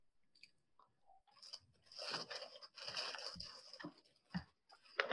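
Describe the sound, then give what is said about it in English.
Someone chews a crunchy bun of marshmallow and nut bark, with moist crunching and crackling bites in irregular bursts, growing louder toward the end, with no talking. “Now I'm going to have the bun. This is very interesting. I've never had anything quite like this. Yes, marshmallow and nut in a bark.”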